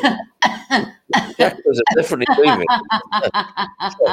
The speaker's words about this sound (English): You can get your body laughing because coughing is also a form of catharsis. So that's one helpful trick that you can use whenever you like.